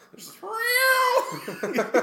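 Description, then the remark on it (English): A voice imitates a van's horn set to a cat's meow, honked at a stop sign as an old lady crosses the street: one drawn-out, rising-then-falling nasal meow, loud, followed by a few quick talking syllables. “Well, my dad fucking has this thing set to cat.”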